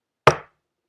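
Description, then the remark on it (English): One sharp, solid knock on a door, a single hit with a quick fading ring and no voices, surrounded by silence. “When you knock on somebody's door, what do?”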